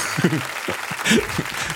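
A crowd applauds, a steady wash of hissy clapping holding at an even level for almost two seconds, with brief voiced sounds breaking through now and then.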